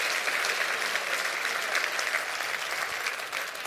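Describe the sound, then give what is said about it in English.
An audience claps steadily in praise of God, a dense wash of many hands striking together, loud and sustained with no pauses throughout. “Clap your hands and rejoice in that.”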